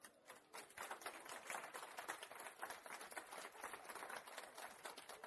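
A crowd cheers and applauds for a newborn baby boy, a dense, steady wash of many hands clapping that holds at an even level for several seconds, with no voices standing out.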